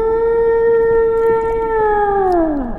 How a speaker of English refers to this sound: I can't recall, but have you met my whale, Torvald?